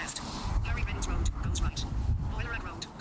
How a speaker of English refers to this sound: We're currently stopped at a junction. Is that a car going to let me go?